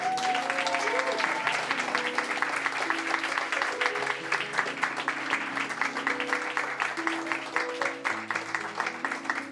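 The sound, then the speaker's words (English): A large audience claps loudly and steadily, a dense wash of hand claps that holds its strength for the full stretch, with faint tonal sounds drifting underneath. “So can we, even though he's not here, can we clap really loudly so he can hear it in Minneapolis?”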